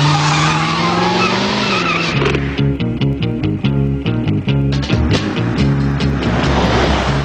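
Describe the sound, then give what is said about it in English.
The powerful engine of a fast rented convertible car with no top roars and rises in pitch with a screech of tires as it speeds off, then loud rhythmic music takes over, all forceful with no talking. “rent a very fast car with no top”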